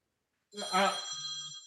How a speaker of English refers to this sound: No, I had to take a phone call. Business. I say, mute your phone, man.